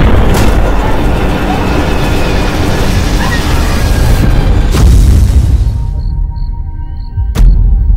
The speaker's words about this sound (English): Your plane has crashed.